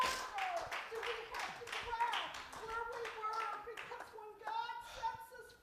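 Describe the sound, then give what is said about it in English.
An audience claps their hands in praise to God in a steady stream of sharp, overlapping claps, with voices calling out and singing over the clapping throughout. “Somebody clap your hands and give God praise in this place.”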